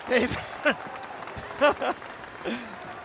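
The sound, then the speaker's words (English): A crowd cheers and claps, with a steady wash of applause underneath and several short, rising whoops and shouts breaking through on top. “They all cheer for you, and they better.”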